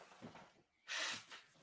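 Someone blows their nose once, a short, loud, hissing burst of air, with quieter sniffly breathing just before and after it.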